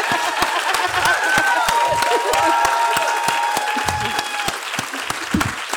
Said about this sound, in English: Wow. Actually, while you're clapping, can we just clap for Melissa Lukashenko? She's just won the Miles fucking Franklin Award.